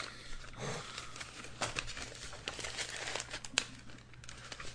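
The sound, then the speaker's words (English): A candy bar wrapper crinkles in irregular, scratchy bursts, fairly quiet overall, with a faint low hum underneath and no one speaking. “I heard a lot of rustling around with something.”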